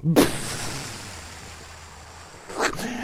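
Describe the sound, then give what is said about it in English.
A loud explosion sound effect bursts out, its deep boom trailing into a long low rumble, followed near the end by a second, sharper blast. “Now let's blow this thing and go home.”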